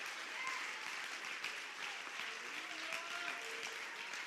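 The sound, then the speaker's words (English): An audience in a church claps hands in a steady, dense wash of applause, with faint voices murmuring and calling out beneath the clapping. “Clap your hands if you believe what I'm preaching.”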